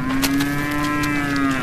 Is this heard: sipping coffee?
no